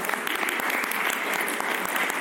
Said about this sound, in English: Thank you very much. Round of applause.